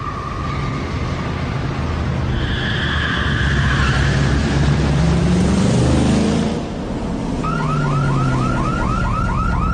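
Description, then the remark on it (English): A loud car alarm blares, cycling through steady tones before switching to a rapid, repeating whooping pattern, with a broad rumble of traffic or engine noise underneath. “Sounds like he forgot about his alarm system.”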